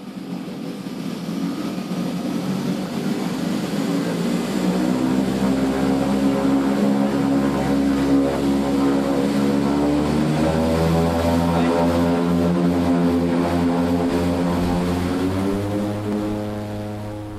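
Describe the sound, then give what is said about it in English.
A steady, droning propeller-plane engine hums loudly and continuously throughout, its layered harmonic tones wavering slightly in pitch, during a flight from Newquay Airport to islands some 25 miles off the Cornish coast, with no voices. “Being some 25 miles off the Cornish coast, the way to get to them is either by boat or via the air, in my case, from Newquay Airport.”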